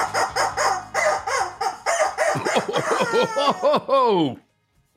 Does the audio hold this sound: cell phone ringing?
no